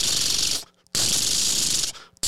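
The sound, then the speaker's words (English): A voice imitates gunfire as a recreation of shooting bullets, with two long, breathy hissing bursts, the second longer, separated by a brief pause and cut off abruptly at the end. The sound is fairly soft, with no speech. “That's not very loud for a gun.”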